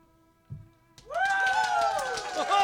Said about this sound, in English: There is a large coliseum built into this encampment, and inside you hear the sound of raucous applause.